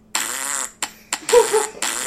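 A loud fart sound effect: a string of buzzy, sputtering bursts, roughly four or five in quick succession over about two seconds, with no talking.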